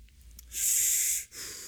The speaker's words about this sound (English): He's breathing in. Here we go.